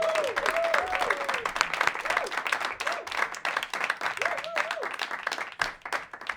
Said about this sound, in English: Please, please give a warm round of applause to my guest, David Pasquesi.